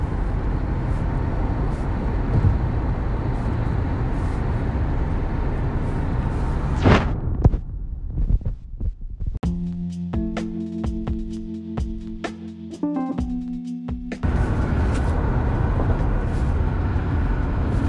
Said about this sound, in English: The drive home from Norfolk is a chill, nice, quiet drive. Cars are headed east towards Virginia Beach. Lots and lots of cars, meaning lots and lots of people.